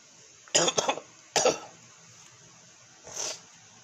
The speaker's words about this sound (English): I'll cough in my sleep and wake up, you know, and it's bad cough.